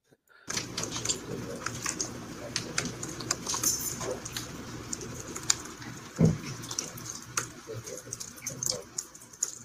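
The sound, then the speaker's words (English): A court reporter types rapidly and irregularly on a keyboard in a courtroom, a steady patter of sharp little clicks running throughout over a low, murmuring background hum. “She sounds like she's typing someone's thoughts.”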